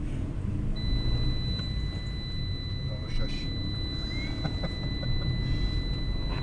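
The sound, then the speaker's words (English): A car's seatbelt warning chime sounds as a steady, high electronic tone because a passenger hasn't got his seatbelt on. It plays over the low rumble of the moving car as it drives through opened gates into the grounds, with a brief spoken remark partway through. “hasn't got his seatbelt on, and the car's telling him off.”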